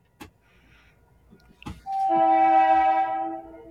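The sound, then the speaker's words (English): A commuter rail train's horn blares in one long, loud, sustained blast, preceded by a couple of sharp knocks and faint rumbling, with no one talking; the line runs across the street from an office in a town. “Sometimes I don't know if people can hear it, but my office is literally across the street from the commuter rail in my town.”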